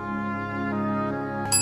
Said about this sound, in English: So I rang the bell a few times this morning